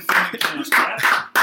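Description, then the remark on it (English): A man claps his hands for his opposite number in a steady rhythm, about five firm, bright claps over a second and a half, with faint murmuring voices underneath. “He's clapping for his opposite number here.”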